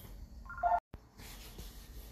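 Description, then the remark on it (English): A brief electronic phone tone beeps as a telephone is answered, then the sound cuts out abruptly to dead silence before a steady low background hiss returns; no one speaks. “I had to answer the phone.”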